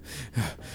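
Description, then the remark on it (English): A voice imitates heavy panting: quick, breathy huffs in a rapid rhythm, with one sharper gasp in the middle and no words spoken. “Fang rolls out and she's like panting”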